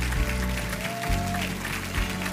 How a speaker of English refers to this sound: Amazing. Come on, clap your hands. Clap your hands.